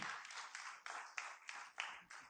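A crowd in a church applauds, a steady wash of many hands clapping with a few sharper claps standing out, fairly quiet throughout.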